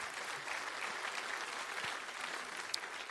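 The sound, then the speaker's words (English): A crowd applauds steadily, a dense wash of many hands clapping at an even, moderate level throughout, with no voices standing out above it. “And now I would like no applause.”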